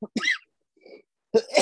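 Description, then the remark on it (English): Several harsh coughs: a sharp double burst, a short quiet gap with a faint wheezy breath, then another hacking cough. No one speaks. “Sorry, I got the coughs.”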